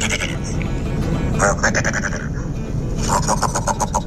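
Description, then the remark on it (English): A male dusky grouse's breeding-season love call, given while strutting in display with tail raised and fanned and neck feathers spread: two bursts of rapid, stuttering, bleat-like notes, moderately loud, over a steady low rumbling background. No talking. “In breeding season, males create a display in which they strut along, tail raised and fanned, neck feathers spread to reveal patches of bright skin, and produce a love call like this.”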